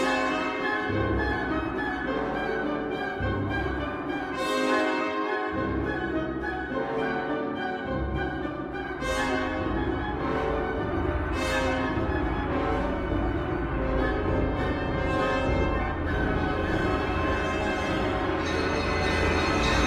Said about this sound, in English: and there are several of them in The Rite of Spring, where you can really hear Stravinsky's debt to the 19th century Russian composer Mussorgsky, and especially to Mussorgsky's opera Boris Godunov and its famous Coronation Bells.